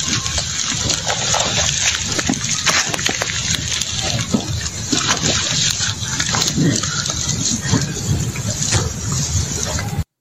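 A large lizard, a Komodo dragon, tears into and gulps down a deer with loud, continuous wet squelching, ripping and slurping sounds, steady throughout with no pauses.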